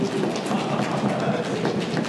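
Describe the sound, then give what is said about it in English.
An audience stomping their feet together on cue, producing a loud, dense, continuous rumble of thuds that fills the space without pause, with faint voices mixed in. “And now everyone can stomp your feet, bring in the feather people.”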